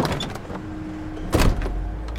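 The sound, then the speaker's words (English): The sliding door of a vehicle's cab rolls open with a mechanical whir, ending in a loud thudding clunk as it reaches its stop, with no voices. “After that, I merely slid the door open and assumed the driver's vacated position behind the wheel.”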